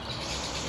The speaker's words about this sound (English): Noisy birdies. Did you get that on there? They're still doing it.